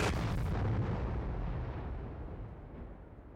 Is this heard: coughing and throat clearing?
no